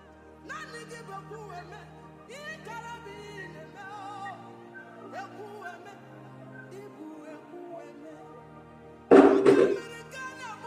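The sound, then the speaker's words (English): Sustained music plays for several seconds, then a church audience suddenly breaks into a loud, dense burst of clapping for God after a prayer near the end, swelling over the music and lasting about a second and a half. “Give the Lord a mighty clap, somebody. Give God a mighty clap, somebody.”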